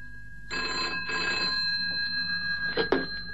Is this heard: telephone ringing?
yes